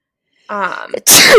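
A single loud sneeze: a short voiced intake with a rising tone, a brief pause, then a sharp, bright burst of breath and noise.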